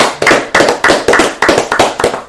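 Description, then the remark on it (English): Loud, steady clapping welcoming a returning guest, around eight sharp claps in an even rhythm, each with a brief ringing tail, with no voices. “So let's clap up for my boy”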